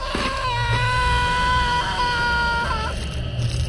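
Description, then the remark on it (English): A piercing, high-pitched human scream erupts from somewhere in the darkness, ringing out loud and sustained for nearly three seconds, wavering slightly in pitch over a low rumbling background before trailing off. “I jumped to my feet and was about to run back around the cabin to my car when an ear-splitting scream erupted from somewhere in the darkness.”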